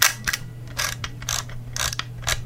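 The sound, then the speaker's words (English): An Olympus camera's manual film advance being wound by hand: a rapid series of ratcheting clicks in short bursts, with a faint steady hum underneath and no voices. “It's Viewmaster? A manual advanced camera. Or whatever. That is an Olympus camera.”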